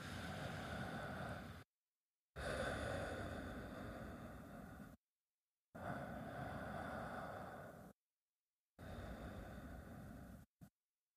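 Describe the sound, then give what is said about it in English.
Slow, deep breathing: four long, airy breaths, inhales and exhales, each lasting a few seconds with short silent pauses between them. No one speaks. “Why don't you take some breaths right now and start to breathe in and out, and we'll give you time to think through those things.”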